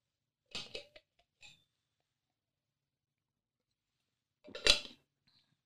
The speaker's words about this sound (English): Sorry, let me take some water.